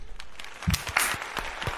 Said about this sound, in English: I'll clap for that. That was a good one.